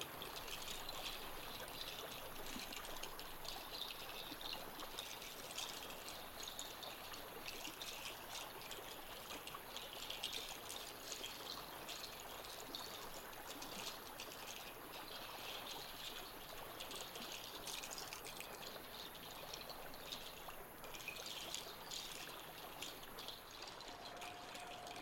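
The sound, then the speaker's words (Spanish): Water flows and trickles steadily, like a small stream running over stones, a continuous bright babbling that stays even for the whole stretch with no voices. “Escucha y siente el sonido del agua.”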